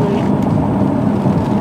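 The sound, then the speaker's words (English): A steady, loud rumble of passing cars on a city street going into Toronto on a Friday afternoon, traffic slowed by an accident ahead, a continuous low wash of noise with no clear breaks or individual horns. “There's lots of traffic in there, too.”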